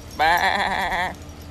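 A single sheep bleats once, a loud, wavering baa lasting about a second, with no talking around it.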